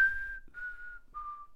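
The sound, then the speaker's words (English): A person whistles three long, sliding notes, each a little lower than the last, with short gaps between them, clear with no talking, imitating a ghost. “He's whistling right next to us, like right in your ear," and all of a sudden it's like a little farther away.”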